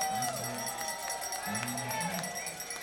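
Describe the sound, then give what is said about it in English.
A lively ballpark crowd at Bossy Phil, at a night baseball game with the Otters, keeps up a steady, loud roar of cheering with scattered sharp claps and shouts, while a man's voice talks over the noise. “Certainly like to hear themselves cheer at Bossy Phil, but I'm sure the Otters like to hear them cheer as well.”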